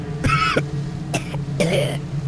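Three harsh, raspy coughs, the first and last longer and the middle one short, over a steady low hum. They sound close and fairly loud.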